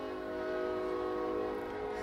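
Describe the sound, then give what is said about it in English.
A passing train sounds a long, steady horn, its sustained chord droning without a break for the whole moment, with no one talking. “we never miss a train on that podcast.”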